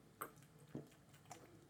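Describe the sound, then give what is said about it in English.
Someone drinking water, with three soft, wet gulping and swallowing sounds spaced about half a second apart against a quiet background, no talking. “Sorry for drinking water.”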